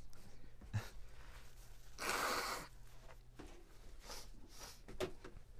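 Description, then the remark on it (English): A single forceful nose blow, a half-second burst of breathy, rushing air, with soft sniffs and small rustling noises before and after. Fairly quiet, with no one talking. “I got to blow my nose.”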